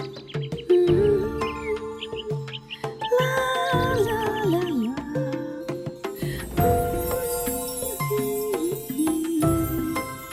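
A little golden bird chirps and sings a lullaby in bright, warbling phrases, weaving over soft sustained musical tones that carry on throughout without pause; no one speaks.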